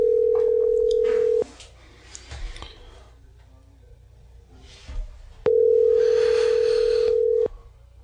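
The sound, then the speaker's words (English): A phone's ringback tone: two loud, steady electronic buzzes, each lasting a second or two, separated by a few seconds of quiet line noise. No one speaks. “Oh, it's ringing.”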